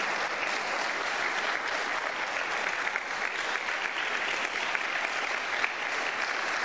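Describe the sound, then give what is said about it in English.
Steady, sustained applause from an audience clapping for people as they go, a dense crackle of many hands clapping at an even level for the whole stretch with no voices standing out. “Agora, por favor, clap for them as they go.”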